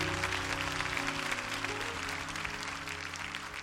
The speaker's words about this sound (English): Could you give my lovely wife a rousing applause?